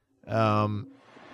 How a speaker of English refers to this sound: Yep, here comes a train. We're rattling the pictures right off the wall,